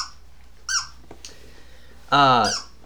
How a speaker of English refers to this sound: The dog is squeaking. That is Piper, you hear. Dog is squeaking.